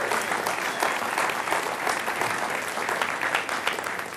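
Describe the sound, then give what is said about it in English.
A group claps together in a sustained round of applause for Jesus Christ at a Thanksgiving-time morning gathering. The applause is dense and steady with no pauses, the many hand claps blending into a bright, even wash of sound. “Whatever it is that you're thankful for this morning, will you just join me in a round of applause for Jesus Christ and for all that he has given us?”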